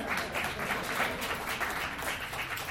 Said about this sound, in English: Round of applause for Josh.